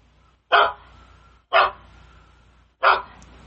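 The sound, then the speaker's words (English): A recorded dog bark played on a loop by an app: three sharp, fairly loud barks, roughly a second between the first two and a slightly longer pause before the third, over a low steady background hum; the loop repeats after about a 15-second gap. “And it should come back on with some more dog barking here in a second.”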